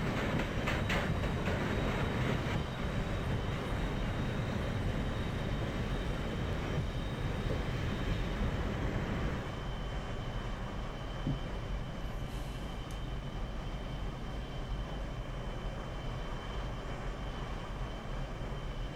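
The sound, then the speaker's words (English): A subway train runs along its tracks with a steady rumble and faint rattling, loud for the first half before settling into a quieter continuous roar. No one speaks. “And I've been on this subway. It's a rough ride. It's rougher than this.”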